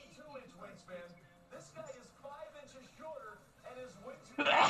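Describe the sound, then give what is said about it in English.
Someone talks steadily, then a single sharp, loud sneeze bursts out at the very end. “Bless you.”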